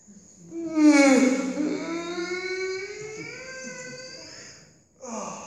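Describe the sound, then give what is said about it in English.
An exaggerated, jaw-cracking yawn of boredom: a loud breathy intake swells into a long, drawn-out groan that slowly falls in pitch and fades over several seconds, followed by a brief voiced sound. “Now let's see how many others yawn.”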